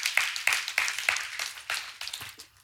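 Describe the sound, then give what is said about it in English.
An audience claps for a few seconds, a dense patter of sharp overlapping hand claps that holds steady and then thins out toward the end. No one speaks. “You can clap.”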